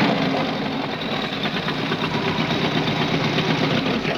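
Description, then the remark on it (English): A motorcycle engine idles steadily, a constant rumbling putter with a fast, even pulse that holds at the same loudness throughout, with no voices, as a stranger rolls up on a motorcycle with a woman on the back in Roger Corman's last film with AIP. “And a stranger rolls up, but not a stranger to you, rolls up on a motorcycle with a woman on the back and a bird on his shoulder.”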